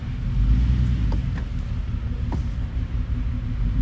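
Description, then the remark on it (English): A cat purring: a steady, deep rumbling drone that continues evenly for the whole few seconds, with a few faint clicks over it and no talking. “Listen to that kitty purr.”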